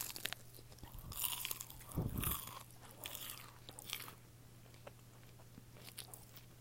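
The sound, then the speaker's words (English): Crisp crunching and chewing on a plain McDonald's fried chicken nugget, with a loud bite around two seconds followed by softer, irregular chews that taper off. No one speaks. “The crispiness, there was a great crunch out of it as they fry their chicken nuggets”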